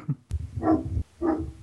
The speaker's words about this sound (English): Is that your dog barking? Is that your dog? No, it's another dog. It's a hound beast outside. My dog is winning.